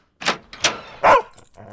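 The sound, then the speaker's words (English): A dog barks three times in quick, uneven succession, loud, the last bark the strongest, with a faint clatter trailing off afterward. “That time you got home from a week of double shifts. And your dog didn't recognize you.”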